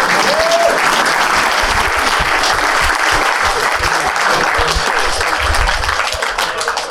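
A crowd applauds loudly and steadily, a dense wash of many hands clapping at once that holds at full volume for several seconds and eases slightly at the very end.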